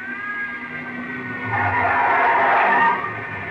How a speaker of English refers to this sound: There's another car coming in.